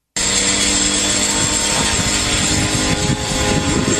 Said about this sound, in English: a long-range kamikaze drone flew past a bunch of Russian refinery workers who whipped their phones out and said in Russian, "Self, what is that? That boy, that needs a valve job. That sure looks like a drone.